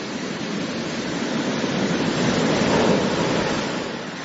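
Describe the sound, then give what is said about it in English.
Steady rushing surf of ocean waves, a broad wash of noise that swells gently toward the middle and recedes, with no voices present. “Ocean waves was the correct answer.”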